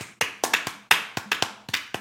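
A short burst of brisk hand clapping, about nine sharp claps in quick succession, close and fairly loud, like one or two people applauding with no talking.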